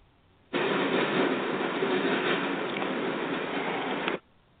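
A train passing right in front of a home window near a train station makes a loud, steady roaring rumble for about four seconds, cutting in and out abruptly, with no voices over it.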